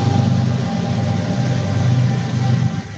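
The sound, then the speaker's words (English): A loud, steady low rumble of a passing train fills the whole stretch, with a thin metallic whine riding on top and no voices over it. “Sorry for that, it's a train.”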